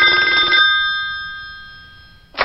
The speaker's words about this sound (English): Moments later, his phone rings.